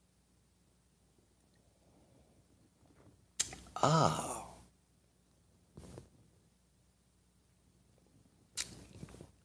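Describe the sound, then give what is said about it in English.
A loud, noisy slurp of hot coffee from a mug lasting about a second, followed by two shorter sipping or smacking sounds with quiet pauses between, and a brief murmured voice. “If you were watching instead of listening on the podcast and wishing we weren't making slobbering sounds on your audio.”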